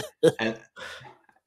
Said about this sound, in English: We're coughing in unison tonight. I've got the worst cough and sore throat. I don't know what it is because I'm not actually sick or anything. It's just I can't get rid of this cough.